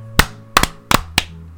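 Four sharp hand claps in an uneven rhythm, made on a count of one, two, three, a couple of them doubled as if two people clapped slightly out of sync, over a faint low steady hum with no talking.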